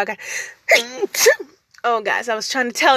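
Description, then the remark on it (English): A single sudden sneeze bursts out, followed by a person talking in a rapid, animated voice. “I was trying to tell you I had to sneeze, but it came up too fast.”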